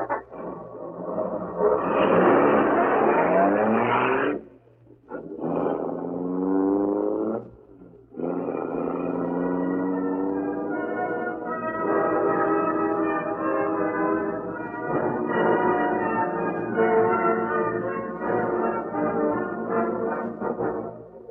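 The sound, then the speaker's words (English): A truck engine drones loudly, its pitch rising and falling as it revs and shifts, with a couple of brief dips before it settles into a steady rumble, as the truck drives to a warehouse a couple of minutes away. “As soon as you get this truck inside the warehouse, me and the rest will take care of the Green Hornet.”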